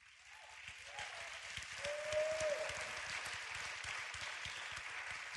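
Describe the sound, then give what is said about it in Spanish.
An audience applauds to give the Lord a clap, with steady, dense clapping that swells slightly and holds for several seconds, with a few faint voices rising above the noise. “Let's give the Lord a clap over.”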